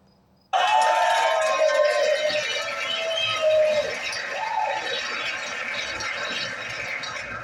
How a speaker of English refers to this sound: She deserved that round of applause